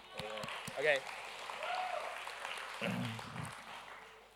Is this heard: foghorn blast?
no